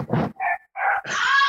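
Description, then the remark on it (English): A dog barks four times in quick succession, loud, the last bark stretching into a higher, strained yelp, reacting to a knocking sound from a bouncing gaming-chair leg rest. No one speaks. “which makes what sounds like a knocking sound, which makes Emerald's dog freak out”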